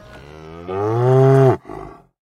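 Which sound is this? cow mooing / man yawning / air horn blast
cow mooing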